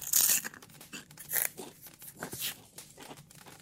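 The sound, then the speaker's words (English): Someone on Christmas Eve crunching crisps from an opened packet, with a few sharp crackly bites among softer, irregular chewing and rustling sounds, fairly quiet and with no talking. “And I've got a packet of crisps open too.”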